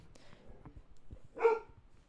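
A single sharp dog bark rings out loudly about midway, standing out above a low murmur of background noise and faint movement.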